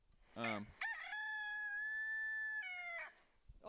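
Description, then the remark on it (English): A single loud rooster crow rings out, rising into a long sustained harmonic call about two seconds long before breaking off, with no talking over it. “I mean, I actually do have a rooster that just you have a rooster? Crows all the time.”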